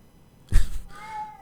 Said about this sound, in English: He doesn't usually meow. Huh. Maybe he's going to the bathroom.